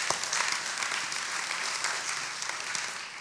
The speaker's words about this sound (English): Yeah, you guys can clap.